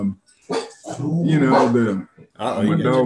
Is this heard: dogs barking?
yes